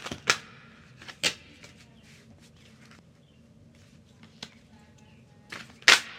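A deck of tarot cards being shuffled: a handful of sharp, papery snaps and flicks scattered irregularly, with quiet rustling in between and a louder burst near the end.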